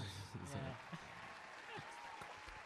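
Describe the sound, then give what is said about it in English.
An applause sound effect: a dense, steady wash of many hands clapping that holds at an even, fairly loud level for the whole few seconds, with some faint low voices mixed in beneath. “Enter applause.”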